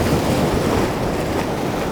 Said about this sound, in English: There's a channel nearby and the water is shooting up through the channel.